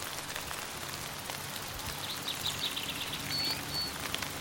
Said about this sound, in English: With your eyes closed, continue to use your imagination as you listen to the sounds of water drops falling through the rainforest canopy.